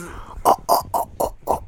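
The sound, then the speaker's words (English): A person, asked to sound like an aardvark in an animal-noise game, imitates a pig with five quick, evenly spaced nasal oinks, fairly loud, each a short snorting grunt. “That's pig. Exactly.”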